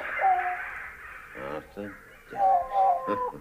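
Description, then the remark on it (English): Two raspy, drawn-out caws from an old-sounding bird called the Wise Old Bird, the birds' leader, fairly loud, with a brief stretch of muffled speech-like sound between them. “We call him the Wise Old Bird. Ah. And this is him, is it? This is him.”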